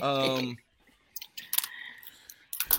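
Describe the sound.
A brief burst of voice gives way to scattered, irregular clicks of typing on a computer keyboard, fairly crisp, with a quick cluster of taps near the end.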